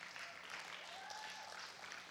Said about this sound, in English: Thank you. So let's just give Randy and Harriet another round of applause.